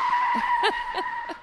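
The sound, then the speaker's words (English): A loud, sustained tire screech from a skidding car in a car crash sound effect, punctuated by a few short thumping bursts like impacts, with no talking. “A car crash sound effect.”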